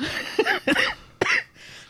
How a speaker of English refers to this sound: How's that cough coming along?